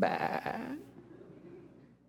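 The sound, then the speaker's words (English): A person's voice imitates a single wavering goat or lamb bleat: loud and quavering at first, then trailing off into a softer, low drawn-out tail with nothing else around it. “How about a goat or a lamb bleating?”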